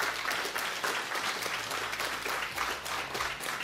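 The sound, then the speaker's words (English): A church audience claps its hands in sustained applause as praise to God for salvation, a dense, steady wash of many overlapping claps at an even, fairly loud level with no pauses. “Can y'all give God a hand clap of praise for salvation?”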